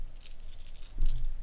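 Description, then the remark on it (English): Five dice clatter and rattle for a technology roll in a game, a quick series of sharp, bright clicks over about a second and a half, with a low rumble underneath and no talking. “So he has four dice for that by himself.”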